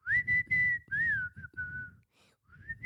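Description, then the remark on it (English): A person whistles a short song tune, a clear, bright melody of several connected phrases that briefly pauses, then resumes with a new note. “It's a stroke no, whistle.”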